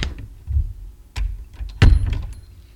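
A cooler's door clunks open and shut: a couple of sharp knocks followed by a heavy, resonant thump, with a low rumble underneath and no voices.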